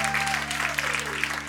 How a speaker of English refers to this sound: There's not a dram of sincerity in that applause. But at least they applauded.